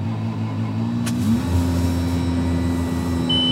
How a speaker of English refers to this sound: in your very modern tractor humming away. And you're surrounded, it seems to me, by equipment that looks more at home in an airport or in an airplane than in a tractor.